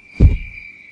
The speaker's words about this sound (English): It's something you haven't heard in a long time. Not this close, just crickets. Just everywhere.